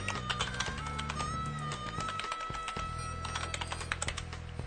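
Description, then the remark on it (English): Rapid, steady typing on a computer keyboard, a dense stream of clicks and taps over a low, humming background tone, with no one speaking. “Can you hear the keyboard? I can hear the keyboard.”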